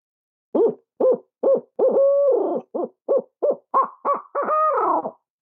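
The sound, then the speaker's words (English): An imitated barred-owl style 8-note hoot locator call, made by a turkey hunter to get a gobbler to gobble: a rhythmic run of loud, deep hoots, two of them drawn out and wavering, ending in a long falling note. No one talks. “The next thing I'm going to do is an 8-note and roll right into a caterwauler or the laugh.”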